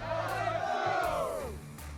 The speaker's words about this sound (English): So, real quick question. What did they all yell?